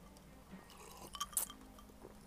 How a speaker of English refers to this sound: As I sip my drink.